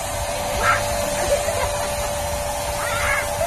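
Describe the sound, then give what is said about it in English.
A steady whooshing hiss of a spray-tan machine runs throughout while a man getting a spray tan lets out short, high squeaky yelps a couple of times over it. “that's the sound of … getting a spray tan”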